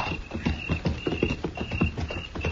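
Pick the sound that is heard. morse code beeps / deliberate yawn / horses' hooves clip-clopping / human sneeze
horses' hooves clip-clopping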